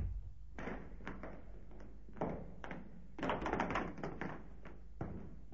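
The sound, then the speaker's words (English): A heavy wooden cellar door in an old house creaks and knocks as it is opened and shut, with several dull thuds and scraping taps, fairly quiet overall. “Through this door.”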